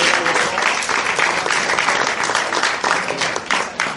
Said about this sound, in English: Let's give a big round of applause, everybody that got started tonight. Congratulations.